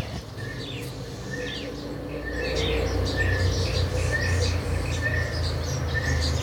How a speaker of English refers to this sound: Oh, you hear that? Those are guinea fowls in the distance there. I have no idea what they're freaking out about.